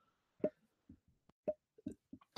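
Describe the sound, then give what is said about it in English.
A few muffled, stifled coughs in an irregular series, short low thumping bursts separated by silence, ending with a sudden louder burst of noise. No one speaks. “Tried to mute that. Got a little bit of a cough right now.”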